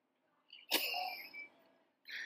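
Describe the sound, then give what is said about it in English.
A single sharp sneeze bursts out with a quick breathy intake before it and a trailing voiced tail, followed by a brief pause and another short vocal sound. “Bless you.”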